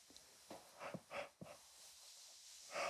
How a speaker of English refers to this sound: And often, as you can hear with me, and I don't only do it to encourage you, but often you start yawning.